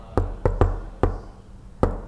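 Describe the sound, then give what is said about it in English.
Five soft knocks on a door in an uneven rhythm, each a short, muted thud with pauses between, and no voices. A gentle, neighborly knock on a renter's door in Los Angeles. “Instead, try a neighborly knock.”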